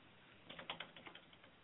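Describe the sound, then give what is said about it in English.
Quick, irregular keystrokes clatter on a computer keyboard as someone types a message, about a dozen light clicks in a short burst, fairly quiet, with no voices. “The one typing on the computer right now? I can hear you typing.”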